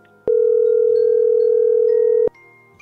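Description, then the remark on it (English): A single ringback tone from an outgoing phone call to a woman's son: one steady, loud electronic ring lasting about two seconds, starting and stopping abruptly, with only faint background noise before and after. “Okay, this is his phone number you gave me. Calling her son.”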